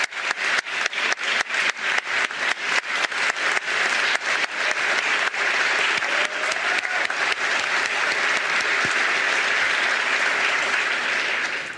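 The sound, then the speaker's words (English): A crowd applauds loudly and steadily, starting with a few sharp, distinct claps that quickly swell into a dense, sustained wash of clapping lasting the full stretch without any voices. “And let us thank them with more than just applause.”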